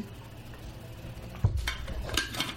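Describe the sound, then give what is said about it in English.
After a quiet stretch, a sudden low thump is followed by a second of clattering, splashy noise as a person taking a sip of water spills it on themselves. No one speaks. “I just spilled that water on myself.”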